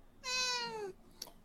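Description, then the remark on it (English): A single drawn-out meow from a female cat, fairly loud, its pitch sliding downward as it fades, followed by a brief faint click. “Are you meowing? Are you meowing, girl?”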